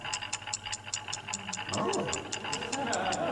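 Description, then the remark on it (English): A small clock in a wrapped gift box ticks rapidly and evenly, crisp. Partway through, a louder, rougher rustling swells underneath while the steady ticking carries on. “Just what I wanted. A lovely little clock.”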